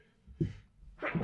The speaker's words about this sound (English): I'm gonna sneeze.